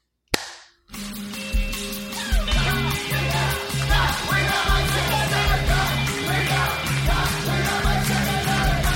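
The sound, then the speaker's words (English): One sharp hand clap cracks out right at the start and dies away quickly; after a brief silence, loud, busy music kicks in and continues to the end. “So there will be none, so this clap will be highly effective.”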